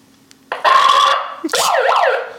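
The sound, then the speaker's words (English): A loud siren-like alarm, one set up by the people present, blares in a steady burst, pauses briefly, then shifts into a rapid rising-and-falling electronic warble. No voices are heard. “That sounds like the alarm we set up.”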